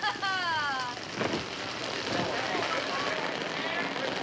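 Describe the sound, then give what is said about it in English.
Heavy rain pours down indoors at an indoor wedding in a steady, dense hiss that fills the whole stretch, with a brief voice rising over it near the start. “Open your umbrellas. It's raining heavily in here.”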